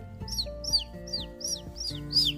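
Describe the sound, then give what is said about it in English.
A small bird, Chirp, stuck high up a tree, chirps six times in quick succession, each high, bright note sweeping downward, evenly spaced over a soft, steady low background hum. “Chirp! Is that you, Chirp?”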